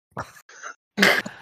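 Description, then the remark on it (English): A short, acted coughing fit while clutching the ribs: three harsh, raspy coughs in quick succession, the last one loudest and breathiest, with no talking around them. “When she says she would be in Silver's debt, I again have a coughing fit and clutch my ribs and say, such a long walk.”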